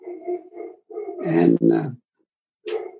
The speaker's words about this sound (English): My dog is barking in the background. Perhaps you can hear that. Welcome to family life.